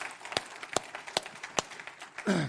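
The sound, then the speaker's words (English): A church audience applauds, a steady wash of clapping with a few sharp, loud claps standing out at regular intervals, ending as a voice briefly rises over it. “Y'all can clap. Go ahead.”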